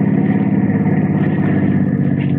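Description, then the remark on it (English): A car engine revs loudly, its steady, throaty rumble holding for a couple of seconds as the vehicle pulls away, with no voices present. “Ample time to drive to the bluffs on the Merrillton Road before the tow car from the Hoffman Garage is due to arrive”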